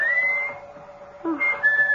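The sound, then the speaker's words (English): A person whistles a call in two clear phrases, a sustained tone gliding slightly upward, a brief pause, then a second rising whistle, with no talking. “whistling for you”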